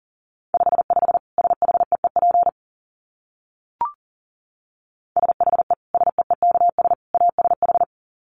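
Rapid Morse code sent at 40 words per minute in a steady, mid-pitched beeping tone: two runs of quick dits and dahs separated by a short silence, with a single soft click in the gap.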